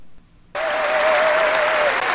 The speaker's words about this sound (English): And then finally, he says that he wants to cut off welfare for immigrants for 5 years, and the entire Republican crowd goes insane.